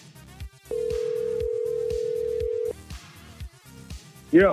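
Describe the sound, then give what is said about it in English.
A phone call is placed: a steady electronic ringback tone holds for about two seconds over faint background music, then a brief warbling chirp sounds loudly at the end as the line connects. “we're calling him right now.”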